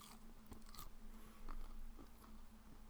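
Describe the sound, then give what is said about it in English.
A crisp bite into a chicken chip during a crunch test, followed by a few sharp crunching chews at uneven intervals, fairly quiet over a low steady hum, with no talking. “And the answer is chicken chip.”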